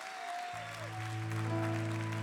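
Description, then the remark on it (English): An audience stands and claps for the Lord steadily in a dense, continuous patter while sustained organ chords swell in underneath after a moment, growing louder. “Stand up and clap for him.”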